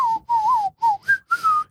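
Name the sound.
person whistling a tune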